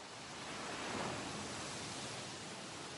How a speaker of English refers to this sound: Just enjoy breathing in harmony with the waves. As you're breathing, you start to feel that you and the ocean are one. One united rhythm.